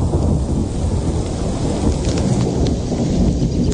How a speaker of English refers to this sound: You're right, that's thunder. A couple weeks ago, we had a little thunder shower. That's what I heard right above my house. So beautiful.